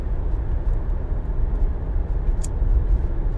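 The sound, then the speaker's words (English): Steady, low engine and road rumble from inside a moving car in traffic with many other cars, continuous and fairly loud throughout, with a faint brief hiss near the end and no one speaking. “There's people right next to me, and I'm just talking to myself in another car. It's a lot of cars.”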